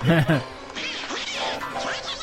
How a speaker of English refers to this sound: Hungarian Rhapsody. This is the song performed by Daffy Duck and Donald Duck in Who Framed Roger Rabbit.